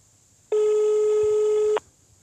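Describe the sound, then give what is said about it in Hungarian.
A single steady telephone ringing tone sounds for just over a second as a mobile phone calls a dealer, loud, with no one picking up and no talking. “Egy elérhetetlen kereskedő.”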